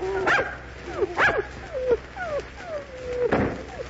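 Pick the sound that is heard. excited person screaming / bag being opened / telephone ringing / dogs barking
dogs barking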